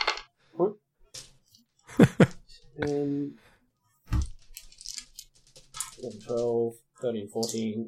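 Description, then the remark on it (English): Several sharp plastic clicks and short rattles of 15 dice tumbling onto a hard surface in a few separate bursts, with a voice briefly counting them in between. “Okay, so from my understanding, we've only got 15 dice, because we just got 2.”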